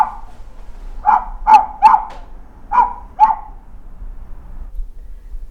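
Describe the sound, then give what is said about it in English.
A recorded dog barks about five times in two quick bursts, sharp and mid-loud, over a low steady background hum, with no talking. “a recording of barking intermittently fills the air.”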